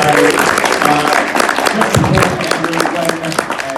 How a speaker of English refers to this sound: All right, well, that's about all the time we have. Huge round of applause for our fantastic team.